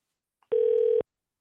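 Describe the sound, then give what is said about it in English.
A telephone ringing on an outgoing call to a guest for an interview: one short, steady electronic ring tone lasting about half a second, clear, with nothing else around it. “Anytime the phone rings, that's a good sign around here, huh?”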